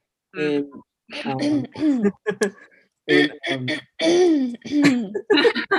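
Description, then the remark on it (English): A woman clears her throat over and over in exaggerated, voiced bursts, fairly loud, with short pauses between each rasping, groaning effort. “is excessively clearing her throat, putting her hands menacingly.”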